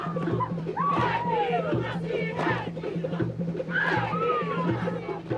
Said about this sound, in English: A new experience, facing up to the haka. Bill Clinton captured by these faces, Jenny Shipley by his side and in his ear.